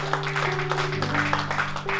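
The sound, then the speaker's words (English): A church audience claps steadily and continuously for a couple of seconds for those who made a faith decision that day. The applause is fairly full, with sustained keyboard or organ tones held underneath. “Come on, can we clap for anybody that made that decision today?”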